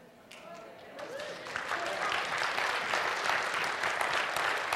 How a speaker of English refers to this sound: we're all at the same time going to rise to our feet, stand up, clap our hands, cheer, and praise the Lord in loud worship because we are no longer a slave to our money.